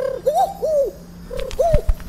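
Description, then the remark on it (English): A carrier pigeon coos in a few soft, rounded phrases, with a brief flutter and a couple of low thumps near the end as it lands. “A carrier pigeon will arrive shortly.”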